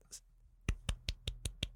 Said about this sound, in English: Give them all a golf clap right now for them.